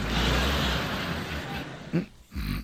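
A man snores loudly: a long, rough, rasping inhale gives way to a short snort and then another gravelly, rumbling snore. No one speaks.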